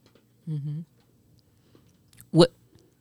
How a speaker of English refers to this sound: That's why he crunching on them peanuts. Right, that's what I'm sitting over here with all that loud crunching.